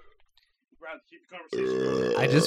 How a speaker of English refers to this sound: I got to burp first. Hang on.